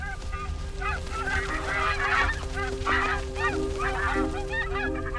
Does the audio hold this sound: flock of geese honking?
yes